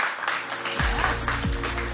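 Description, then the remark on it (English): A live audience applauds steadily in a dense, crackling round of clapping, and a low, humming music bed with sliding tones swells in beneath it partway through. “Come on, everybody, give them a round of applause.”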